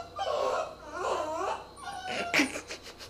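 A female dog whimpers in a run of drawn-out, wavering whines, followed by a couple of sharper, breathier yelps near the end, with no one talking.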